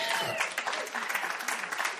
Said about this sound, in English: Now, are you clapping because you don't need me? Are you?